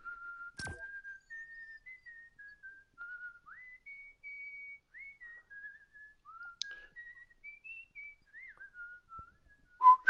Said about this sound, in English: You can yeah, we can whistle. I can whistle.